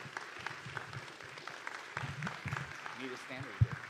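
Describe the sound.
An audience claps steadily in a dense, moderate patter for a few seconds, welcoming a speaker coming up to share a testimony, with murmured voices underneath and a short voiced call rising out near the end before a single low thump.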